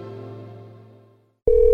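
A telephone rings: a chiming electronic tone fades out, then after a brief silence a loud, steady ring starts up. No one speaks.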